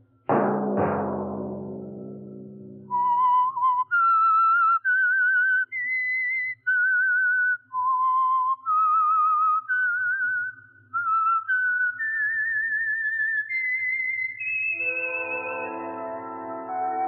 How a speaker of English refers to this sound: Let that whistle be your signal each Sunday for the Signal Oil program, The Whistler.